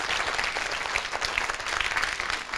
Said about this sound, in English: Let's give God a clap offering. Hallelujah.